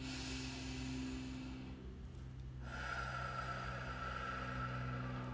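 A slow, deep breath drawn in and let out through the nose during a breath-work exercise, airy, with a brief pause between inhale and exhale over a faint steady hum.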